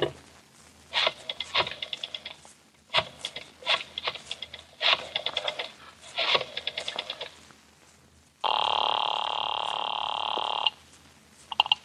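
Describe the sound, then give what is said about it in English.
A rotary telephone on a desk is dialed in several quick bursts of ratcheting clicks, clear and crisp, followed by a steady electronic ringing tone lasting a couple of seconds. No one speaks. “Oh, if you want to use a phone, you may use mine right there on the desk.”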